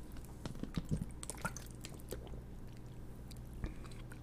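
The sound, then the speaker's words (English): Someone drinks water, with wet mouth clicks, gulps and small sips scattered over a few seconds against a quiet low hum. No one speaks. “Let me drink some water.”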